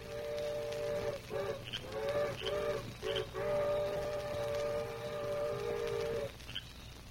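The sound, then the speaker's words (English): The whistle of an eastbound train blows from a distance, a few short chord-like toots followed by one long sustained blast, with a low steady rumble underneath. “There go eastbound train now, Dan. You hear whistle?”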